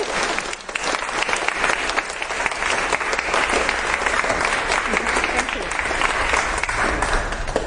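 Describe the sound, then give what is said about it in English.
Sustained audience applause thanking a speaker at the end of a talk, a dense, steady wash of many hands clapping at even loudness for several seconds, with no voices standing out above it. “Applause for the digital recording.”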